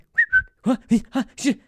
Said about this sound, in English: Every single time the whistle is happening, my dog reacts to a whistle because she's a dog. Literally every time this guy's phone goes off, my dog is...